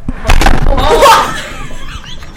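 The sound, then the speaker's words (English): A microphone knocked over: a loud, muffled thump and rattling clatter, followed by a short squealing scrape and a low, fading rumble of handling noise. “I just knocked over the mic.”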